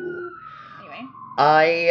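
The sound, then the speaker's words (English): An emergency siren wails with a slowly falling tone, then a loud voice breaks in, imitating the siren's rising whoop. “I think, speaking of no boundaries, here comes our first siren.”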